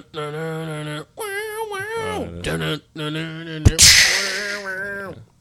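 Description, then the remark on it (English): A voice makes sustained, wavering tones, then imitates the single glass shatter of Stone Cold's wrestling entrance: one sharp crack followed by a bright, hissing crash that trails off into more vocal sounds. “Well, it's just the one glass shatter.”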